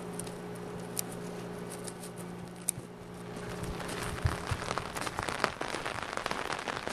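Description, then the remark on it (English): Steady rain patters on hard surfaces, a dense crackle of drops with occasional louder splats and a low, constant hum underneath; no one speaks. “When we get rain like this, we get a break, and it's not just a physical break, but it's a mental break too, because we're always checking the trees for water because they all dry out at different times, so it's something that's always on your mind.”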